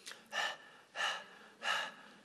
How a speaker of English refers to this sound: Panting. God, I need help. I need some water.